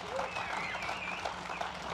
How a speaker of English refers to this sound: How many think that God is doing some pretty cool things in Victorious Life? Come on, give Him a hand clap of praise, would you?